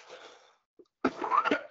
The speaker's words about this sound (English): While I cough.